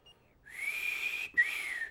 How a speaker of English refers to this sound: He attracts the attention of Bobby Hard, who gives a low whistle.